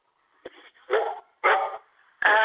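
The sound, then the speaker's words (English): A dog barks several times in quick succession, three or four loud, sharp barks with short pauses between them, with no talking over them. “Who's got a dog?”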